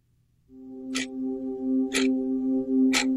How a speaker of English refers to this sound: Now, if your children are listening with you, I beg you to move them away from the radio as the scary, scary synthesizer and the clock of terror combine to weave a web of horror for you in this ad.